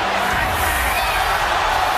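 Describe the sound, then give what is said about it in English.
A large crowd roars and cheers as a man rolls over covered in thumbtacks, in a steady, loud wash of noise that holds for the full two seconds without letting up. “People are cheering this, JR.”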